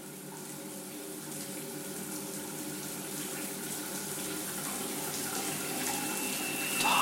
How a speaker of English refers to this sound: A shower. I would wash off the scent, then back to work. I wait for the water to heat up as I stand on the other side of the curtain.